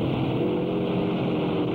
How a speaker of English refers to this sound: GT Cobra of Schlesser and Bondurant sloshes through the 6-inch-deep river along the pit straight